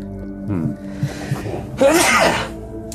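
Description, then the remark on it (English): A man sneezes once, a single sharp burst after a brief voiced inhale, loud and breathy, with a low steady hum underneath. “Every time he sneezes, his face changes again.”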